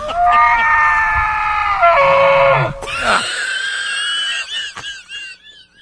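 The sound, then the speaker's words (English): A voice imitates an angry elk bugle: a loud, strained, whistling tone held for several seconds, then leaping higher into a shrill squeal that wavers and fades. “Did you just do an impression of the angry elk?”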